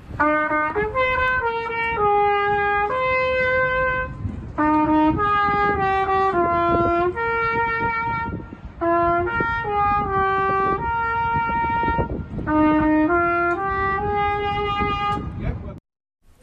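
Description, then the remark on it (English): A repaired, panel-beaten trumpet plays a New Zealand classic tune: a steady, loud melody of sustained notes that step up and down in pitch, phrased in four short passages with brief breaths between them, then stops. “A New Zealand classic on the trumpet, didn't it sound amazing?”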